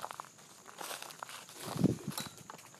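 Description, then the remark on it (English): Footsteps crunch through dry dead leaves, a steady series of crackling, rustling steps with one heavier, louder crunch near the middle and lighter crinkles around it. “Fuck, there's a lot of dead leaves around here.”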